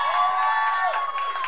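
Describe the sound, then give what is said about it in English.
A few scattered, half-hearted handclaps from an audience, sparse and uneven, heard over a steady ringing drone with no talking. “Enjoy those fucking pity claps, bitch.”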